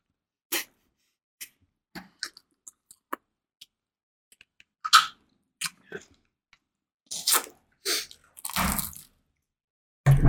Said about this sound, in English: This has become a mukbang, guys. We're a mukbang channel now.